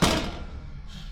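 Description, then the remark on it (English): A single heavy thud of a door being shut in a hurry, loud, with a booming low rumble that lingers and fades over the next second. “Through that door! Hurry! Now, close it!”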